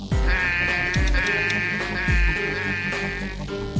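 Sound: donkey braying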